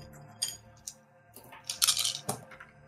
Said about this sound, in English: I'm going to do these rolls more efficiently by rolling multiple dice at the same time.